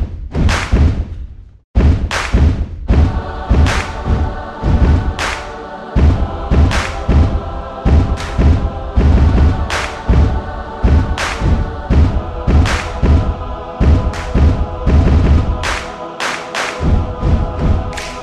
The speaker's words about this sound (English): Now, keep in mind, this is all the audience. I'm making these kicks even. That kick, that's stomps, I guess. Feet, claps.